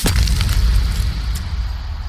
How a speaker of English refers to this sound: And I try to close my eyes against the swiftly arcing hammer. But they won't close. And the hammer comes down. Once. Twice. Three times. I lose count at five.